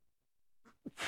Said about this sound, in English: Bless you.